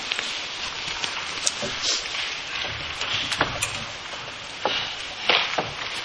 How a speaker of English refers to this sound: Love to hear your pages rustling.